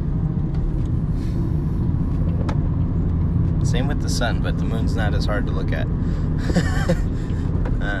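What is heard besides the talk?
truck driving past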